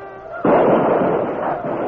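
A sudden loud eruption of gunfire as hard-riding uniformed troopers charge into a fight, a dense crackling volley that holds steady after a brief tonal lead-in, heavy, with a slight dip before surging again.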